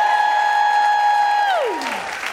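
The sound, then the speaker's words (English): A comedy show audience applauds steadily while a single loud, sustained high cheer rings out over it, then slides sharply downward in pitch near the end. “You guys are a fantastic crowd.”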